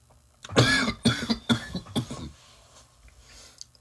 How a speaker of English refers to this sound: That's always the worst. No, let me tell you. The worst kind of coughing is the one, like, obviously, fuck, my eyes are watery.